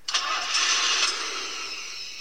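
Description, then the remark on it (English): A car engine turns over and catches, then keeps running with a steady hum for a couple of seconds. No voices. “Besides a phantom house, there have been many sightings of a ghostly car.”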